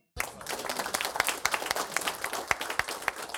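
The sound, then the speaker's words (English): A burst of applause starts abruptly and holds steady, a dense wash of many hands clapping with a few sharper, louder claps popping out, and no voices. “We need some applause for that one.”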